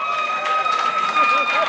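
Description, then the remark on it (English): A live audience breaks into steady applause, dense clapping mixed with cheering voices that holds at an even, fairly loud level throughout the short burst. “Okay, everyone who just applauded is coming back with me to my trailer.”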